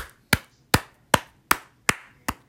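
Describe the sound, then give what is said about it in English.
Six sharp hand claps in a steady, slightly slow rhythm, each a crisp, bright smack that fades quickly, with no voices around them. “I wanna clap.”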